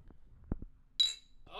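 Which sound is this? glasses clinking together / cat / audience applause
glasses clinking together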